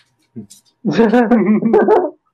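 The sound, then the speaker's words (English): A small 15-pound dog gives one short yip, then a fast, continuous run of high-pitched, yappy alarm barks lasting about a second and a half, loud and alone. “I just call my dogs alarm dogs.”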